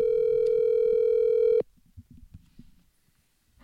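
A phone line rings out on an outgoing call: one loud, steady electronic ring tone holds for about a second and a half, then cuts off, leaving faint low background rumble.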